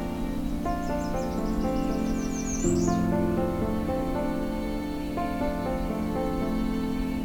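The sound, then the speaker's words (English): Songbirds, including American Redstarts, Nashville Warblers and Yellow-Rumped Warblers, on trails extending from the Kinglet Junction, sing in a series of quick, high chirping trills early on, set against a steady, droning tonal background that fills the whole stretch. “We'll be hearing from American Redstarts, Nashville Warblers, Yellow-Rumped Warblers, and more.”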